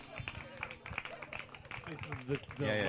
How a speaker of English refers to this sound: Laugh clap.